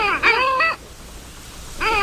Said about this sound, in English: And what an interesting call this bird makes, as though it might be asking a question. Not sure what the question is, though. It's today's Talkin' Birds featured feathered friend, Clangula hyemalis, the long-tailed duck.